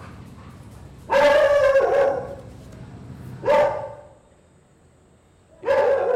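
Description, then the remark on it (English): A dog barks three times, each bark loud and harmonic, with short pauses between them over a quiet background. Nobody speaks. “I'm on a Zoom call with a client and my dog will be sleeping right next to me like an angel. Suddenly he'll go boom, boom, boom.”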